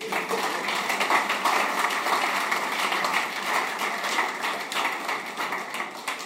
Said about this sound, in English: I thought the men would clap for me.